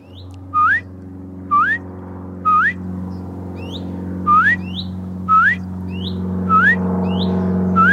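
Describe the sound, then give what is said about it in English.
A bird of unknown kind that lives in a tree and is always on its own repeats a bright, upward-sweeping whistled call about seven times at a steady, unhurried pace, each note short and clear over a constant low droning hum. “And because I'm ignorant, I can't tell you what kind of bird that is. But I recognize its call.”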